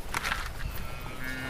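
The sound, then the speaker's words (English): Calves out on grass mooing: a brief, low, drawn-out moo with a steady tonal hum rises toward the end over a rough, noisy background, with no talking. “Hi, calves. Come on, Cappies.”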